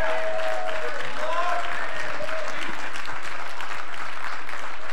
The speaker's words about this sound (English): Can you say amen? Can we give Jesus a shout of praise? Can you give him a hand clap this morning?